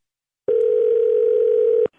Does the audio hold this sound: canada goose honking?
no